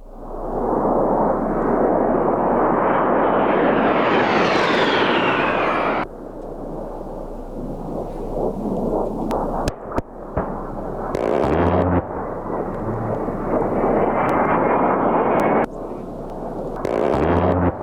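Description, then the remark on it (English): A loud A-10 Thunderbolt ("Warthog") attack jet roars past, its engine whine climbing in pitch, then abrupt cuts to more jet noise punctuated by sharp bangs and short, buzzing bursts of rapid fire. “This morning, I mentioned the A-10 Thunderbolt and immediately got a text message in from Craig going, holy cow, the A-10, that is one of the most impressive jets in the world.”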